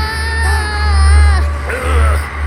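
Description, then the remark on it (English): A banshee scream echoing over the plains: an eerie, high wailing shriek with a wavering, bending pitch that holds loudly for over two seconds above a steady low rumble. “a banshee scream echoes over the plains.”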